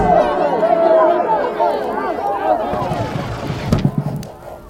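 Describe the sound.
An angry crowd gathered outside, many overlapping voices clamoring and shouting at once, a dense steady roar that thins slightly toward the end, with a brief thump partway through.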